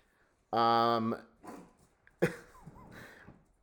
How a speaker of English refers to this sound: Maxie's now playing with my younger dog